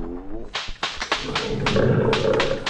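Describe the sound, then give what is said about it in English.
A Bengal tiger snarls and roars, with sharp bursts and thumps breaking in before a rough, low growl swells and holds near the end. “That tiger could have killed you.”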